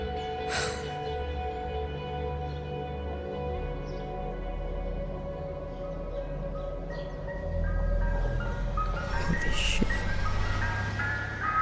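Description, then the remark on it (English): A truck's engine rumbles beneath a steady, tinkling jingle melody, the low drone growing louder partway through as the vehicle draws closer. No one speaks. “Our subject is approaching. When he stops the truck, move into phase 2 positions.”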